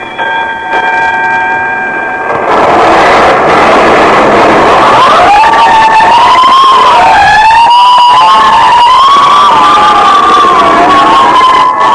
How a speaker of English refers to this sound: Every time I hear fire engines at night, I think of Harrison Murdoch and the Chantilly case.